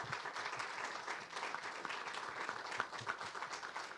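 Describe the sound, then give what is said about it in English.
Sustained applause from an audience for a discussion panel at the close of an evening event, a dense, steady wash of many hands clapping at a fairly even level throughout, with no voices standing out. “Let's have a big round of applause for our panel.”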